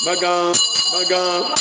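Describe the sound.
A voice imitates a ringing bell with two bright, sustained vocal tones in quick succession, fairly loud, with no other sounds around it.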